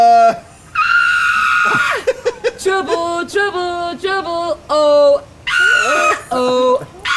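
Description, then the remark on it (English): Goats scream in a chorus of loud, wavering bleats, several overlapping calls that rise and warble in pitch, with people talking in between and over them. “We're a little preoccupied with the goats.”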